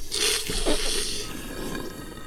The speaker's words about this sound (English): Wait, what about the slurp? Oh, wait, wait. Have we done the sound of a sip in a while? We haven't.